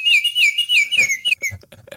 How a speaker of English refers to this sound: The Orioles back, and we'll be here all year. So get used to it, folks. That's not birds flying in my house. If it's really annoying, let me know. Just like tweet at me and be like, hey, stop tweeting the Orioles bird.